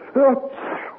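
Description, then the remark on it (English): A single sneeze: a short voiced, rising gasp followed by a breathy, hissing release that trails off, with no talking around it. “Bless you and cheer up”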